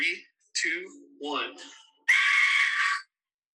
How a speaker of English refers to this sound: It sounded like this thing that FaZe Rug's been blowing into. On TikTok, it's called the Aztec Death Whistle. And when you blow it, it sounds like a girl screaming.